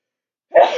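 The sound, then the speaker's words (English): A single sharp sneeze bursts out after a moment of silence, loud and breathy with a quick onset and a short trailing release. “You sneezed on me.”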